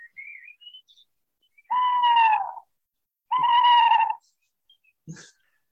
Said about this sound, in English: And he comes across an owl. And I've got a sound clip of the owl encounter.